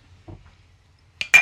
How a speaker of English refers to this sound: Raspberry lemon, huzzah. Clink it.